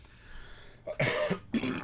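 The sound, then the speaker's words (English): A person gives two sharp coughs from drinking coffee, in quick succession, the second following about half a second after the first, with no talking. “Sorry, a little coffee cough.”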